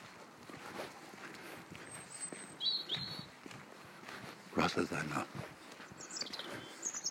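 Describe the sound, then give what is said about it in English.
A chaffinch sings a few short, high, bright phrases, partly under a person talking, with faint rustling and footsteps in the background. “I keep imagining that's a chaffinch.”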